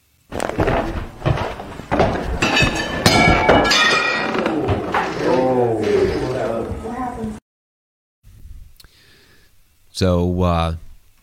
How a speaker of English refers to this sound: So you're going to hear this like kind of look almost like chamber music or something in the background. You'll hear like some chimes or whatever.